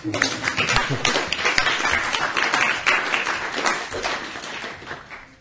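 An audience applauds, a dense, steady patter of many hands clapping at once that stays fairly loud for several seconds, easing slightly toward the end. No one speaks over it.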